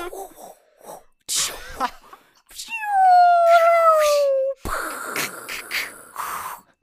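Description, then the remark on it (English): A voice imitates a fighter jet as a Foley-style impression of the planes in the film Top Gun, with breathy whooshing bursts followed by a long, loud, slowly falling whine lasting over a second, then noisy rushing roars and hisses. “There's just some of the Foley sounds. Who knew? That were used Secondhand in Top film Gun plane impressions there.”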